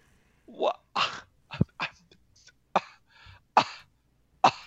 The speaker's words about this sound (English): You better get that checked out. You got a pretty nasty cough there. It's COVID.